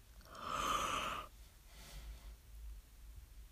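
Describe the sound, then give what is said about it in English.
A single drawn-out yawn lasting about a second, a breathy rising exhale that fades quickly into quiet hiss with no talking. “I really didn't think I was gonna yawn.”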